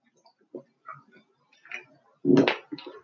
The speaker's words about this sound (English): Lord, I'm drinking some water, man. So if you hear the crackling of the bottle, forgive me. I'm wetting my palate a little bit.